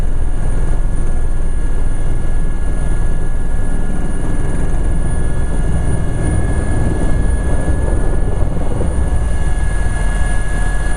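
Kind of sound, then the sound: vehicle, helicopter in flight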